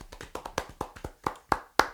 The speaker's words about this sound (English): Let's get a round of ass claps, everyone.